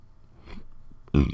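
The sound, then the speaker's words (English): A single loud burp erupts near the end after a short stretch of quiet, low rumbling and a faint gulp-like sound. “Ooh, burp.”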